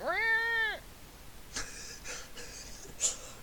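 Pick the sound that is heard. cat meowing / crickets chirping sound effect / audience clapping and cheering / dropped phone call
cat meowing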